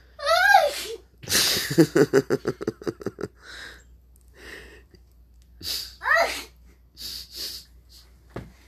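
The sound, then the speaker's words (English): A small boy makes a series of exaggerated pretend sneezes, sharp high-pitched bursts, with a rapid giggly stutter of breathy pulses in between. “We're fake sneezing now.”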